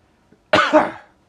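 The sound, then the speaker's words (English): A single loud cough bursts out suddenly, harsh and raspy, then trails off over about half a second in near silence. “Pardon my cough again.”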